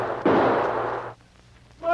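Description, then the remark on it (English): A single loud gunshot cracks out suddenly and rumbles on briefly before cutting off, followed by a quiet pause and then a voice beginning to speak. “The dogs, terrified by the shots, raced along frantically.”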